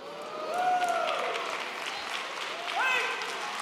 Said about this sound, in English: The claps went down. I should have drug it out a little bit longer before I told you.